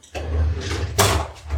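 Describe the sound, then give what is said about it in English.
A kitchen gadget drawer slides open with a scraping rumble, followed by a sharp rattling clatter of gadgets shifting inside, over a steady low hum. “Let me look in this drawer of magic. The kitchen gadget drawer?”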